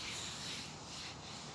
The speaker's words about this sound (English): It's a beautiful afternoon. And this is my favorite and most best time of the year. You hear that rustling of the leaves.